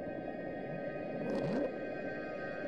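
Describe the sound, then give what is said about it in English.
The underwater ocean recording known as the Bloop, captured in 1997: a single low, rising sweep-like call swells up briefly out of a constant hiss and rumble of background sea noise, with no voices. “And then one of the most famous ones is called the bloop.”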